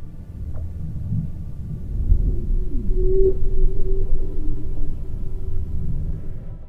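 An eerie, continuous low rumble with faint sustained humming tones and slow sliding pitches drifting over it: the Ross Ice Shelf singing as winds blowing across its snow dunes create vibrations, picked up by seismic sensors; steady and moderately loud throughout, with no voices.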